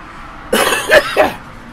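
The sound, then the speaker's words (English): A man coughs on a porch in cold weather, from spring allergies: three quick harsh coughs in a short burst with a raspy, throaty edge, over faint background noise and no talking. “It's too cold out. It's bad for my cough.”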